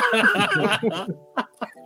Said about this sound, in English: Look at you coughing and shit. Don't die on me now.